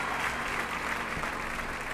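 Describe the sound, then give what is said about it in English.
Steady applause from a group, a dense, continuous patter of many hands clapping at an even level for the full two seconds, with no voices standing out. “Clapping.”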